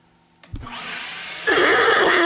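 A vacuum cleaner clicks on and its motor whirs up, then jumps to a louder, steady roaring whine with a wavering pitch, with no voices.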